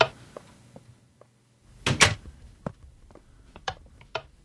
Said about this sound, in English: There's a wire right there. Where? Oh, it opens the door. So once you go through it, you can't go back out.